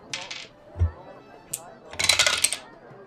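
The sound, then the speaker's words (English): Two dice rolled for a Grace check in a tabletop role-playing game rattle and clatter across a hard table: a brief burst, a single click, then a longer tumbling clatter that settles. A soft thump comes in between. “I want you to roll plus grace for me.”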